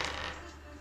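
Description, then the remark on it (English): Dice clatter and tumble briefly across a hard tabletop during a roll-off, with a quick burst of rattling that fades out within a second. “Roll it.”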